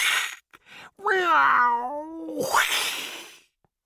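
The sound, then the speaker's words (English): Several cats gathered around a pond hiss loudly in short breathy bursts, then a long wavering yowl slides up and down, ending in another harsh, sputtering hiss. “They hissed at her fiercely and reached out their paws to swipe her.”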